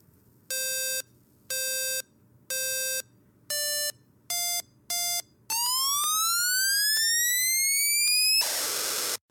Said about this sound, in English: And so I did program an explosion sound that's very reminiscent of like the Atari 2600 days.